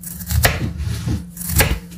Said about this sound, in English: So I'm going to start. Yeah. Okay. By just chopping this onion that I've already got in my hand.